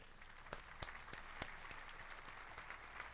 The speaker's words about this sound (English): You get a round of applause for me,